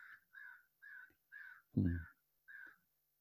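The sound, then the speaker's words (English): A bird calls repeatedly outdoors, six harsh caw-like notes in a steady rhythm, one louder and deeper than the rest, fairly close with quiet gaps between calls. “A bird calls, hearing, hearing, returning to breath.”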